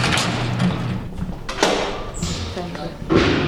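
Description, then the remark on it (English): A heavy sally port security door closes with a few loud, echoing thuds and clanks spread across a few seconds, in the security housing unit of Pelican Bay supermax prison in northern California, with faint voices murmuring in the background. “Is this another sally port?”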